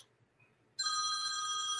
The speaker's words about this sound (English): Oops, somebody's phone's going off. Yeah, it's me. Excuse me for one second.